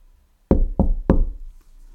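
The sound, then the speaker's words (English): Three firm knocks on a door in quick succession, loud, each with a solid hollow thud that fades briefly before the next. No one speaks. “Listen, I am standing at the door knocking.”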